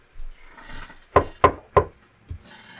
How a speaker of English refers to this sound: Yeah, you can... You can walk up to one of them and knock on the door if you'd like.